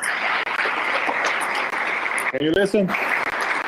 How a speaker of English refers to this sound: This is the second round of voting right now, and the last round. They're applauding right now at the floor. I don't know if you can listen.